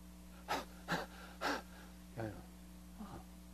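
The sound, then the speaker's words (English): A person imitates the heavy breathing of two people in unison, heard in the middle of the night from a few tents away in a field in the Dordogne, France: five loud, rasping breaths at a steady rhythm, the last two softer and more voiced, over a faint steady electrical hum. “In unison, two of them together, great heavy breathing.”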